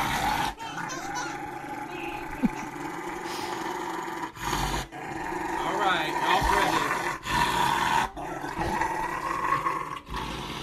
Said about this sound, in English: Oh, you silly dog. Holy shit. Yeah, that's that guy trimming his dog's nails.